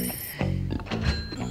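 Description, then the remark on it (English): A cash register rings and coins clink in a steady mechanical loop at the start of a song, with several sharp metallic hits spaced evenly apart, fairly loud, with no voices. “Second that starts the cash register. The cash register starts.”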